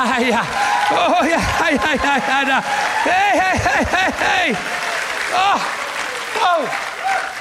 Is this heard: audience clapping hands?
yes